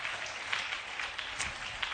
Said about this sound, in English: Yeah, clap for them. It was powerful.